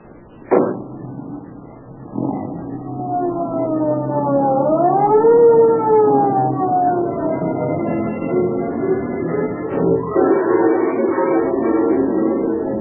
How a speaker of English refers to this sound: Although the police car starts its journey with sirens screaming, it enters the neighborhood where Edna lives in silence.